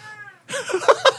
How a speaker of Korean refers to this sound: 죄송하지만 지금 저희 스튜디오에 고양이가 난입을 해서 자기를 봐달라고 지금 야옹야옹 울고 있습니다.